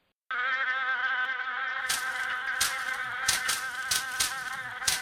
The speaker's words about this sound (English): undulating clouds of mosquitoes that would rise and come across the landscape and descend upon them